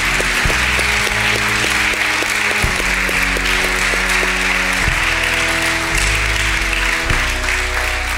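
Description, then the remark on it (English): A church audience applauds people who came forward to dedicate their lives to Jesus, a steady, dense wash of clapping for the whole stretch, while sustained keyboard chords hold and shift underneath every couple of seconds. “We just want to applaud you today and say, thank you, God, that you found a relationship with him.”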